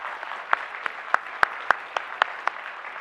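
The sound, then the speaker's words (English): A crowd applauds steadily for people who served or are serving in the army, a dense wash of many hands clapping with a few sharper, louder claps standing out at irregular moments throughout. “There may be people in the overflow that are over there, and please just know if we could see you, just know that our applause is for you as well.”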